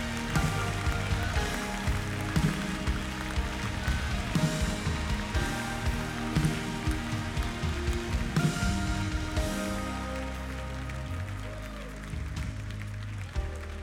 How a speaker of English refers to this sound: Come on, they're coming, they're coming. Clap your hands. As long as they're coming, we're going to clap.